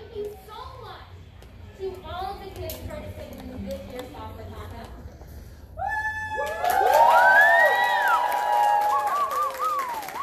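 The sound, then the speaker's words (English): Chatter and children's voices from a crowd, then a round of applause for all the participants bursts out about halfway through, swelling louder with cheers and high excited whoops until the end. “That was a round of applause for all the participants.”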